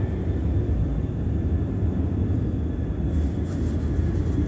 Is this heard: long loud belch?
no